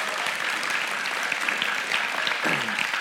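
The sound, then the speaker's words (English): An audience claps steadily throughout, a dense, even patter of many hands at moderate loudness with no one speaking over it. “And I don't know if I heard like a clap or a cough, but you should clap for that because God knew what we were going to be doing today.”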